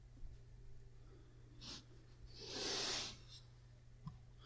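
A single sneeze: a short breathy intake, then a loud hissing burst of air, over a steady low hum with no talking.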